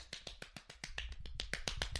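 One person claps rapidly and steadily, about a dozen sharp claps in two seconds. It is picked up quietly because the microphones point away from the clapping, and there are no voices.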